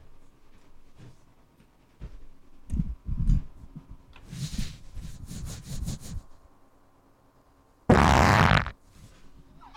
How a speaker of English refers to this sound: Oh, hang on. Fart. Here we go.